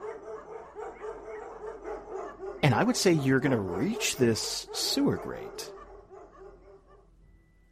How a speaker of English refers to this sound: And you're going to slip out of this house and down this alleyway. And you're going to start to hear those dogs approach.